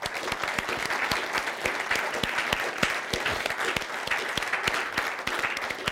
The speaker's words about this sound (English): Why don't we give a lot of clap and just thank him, shall we?